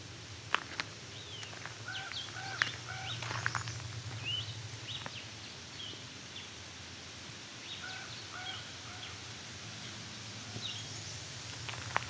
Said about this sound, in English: American Red Start.